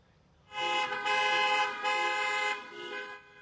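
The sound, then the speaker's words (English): Car horns honk in a series of long, overlapping blasts that run together for about three seconds, over a low rumble of passing traffic, during a drive-by parade of decorated cars and golf carts in Fort Myers, Florida, celebrating a military veteran's 100th birthday. “Frank Sicelli smiled and waved his Marine cap as the line of cars and golf carts drove by with decorations and signs.”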